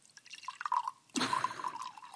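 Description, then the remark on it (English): Wine poured into a glass at a table: a light gurgling trickle with bright dripping tones, then a fuller splashing stream for the last second. No one speaks. “I'm going to bring my wine up right here. Maybe you can hear me pour it.”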